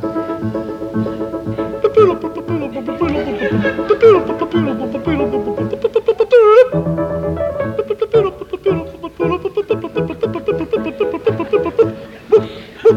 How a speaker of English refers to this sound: And this is the overture.